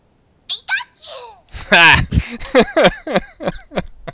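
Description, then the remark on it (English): A single sharp sneeze bursts out, surrounded by quick, animated vocal sounds before and after. “Bless you.”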